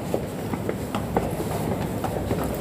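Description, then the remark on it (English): A London metro train travelling from Waterloo to Bank rumbles steadily with a dense low-frequency roar, punctuated by rhythmic rail clicks and clatter at regular intervals, moderately loud, with no voices. “from Waterloo to Bank and City Line, and now we are going to change trains to Central Line.”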